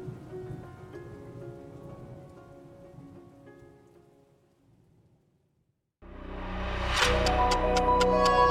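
Steady rain pattering loudly on a hard surface, with dense droplet ticks that start abruptly after a soft tonal passage fades into a brief near-silence; rainy-season rain at Seyende Camp, a camp for internally displaced people.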